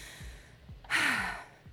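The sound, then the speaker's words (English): A single heavy, breathy exhale rushes out from someone winded after 15 minutes of interval work on a rowing machine, while soft, low thumps pulse faintly underneath. No one speaks. “Got me breathing.”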